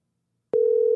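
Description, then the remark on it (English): A steady telephone dial tone starts abruptly after a half-second of silence as a phone call is being placed, and holds at an even, moderately loud level, alone with no voices. “Plus, I'm going to find out if my fucking phone works.”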